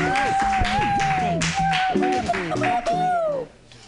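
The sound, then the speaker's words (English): An audience at a comedy show claps and cheers for a comedian for a few seconds, with voices calling out over the applause before it drops off suddenly near the end. “All right, everybody, give it up.”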